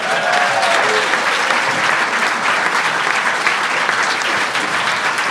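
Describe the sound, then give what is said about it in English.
A crowd claps steadily for several seconds, a dense, sustained wash of applause with a few faint voices mixed in, holding at an even loudness throughout. “A round of applause for our dice, everybody.”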